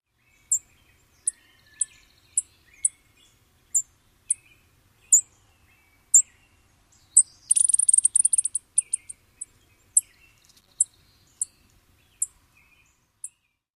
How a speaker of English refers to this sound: This call note is very similar to other sparrows in the genus Spitzella. Here is the chipping sparrow call one more time.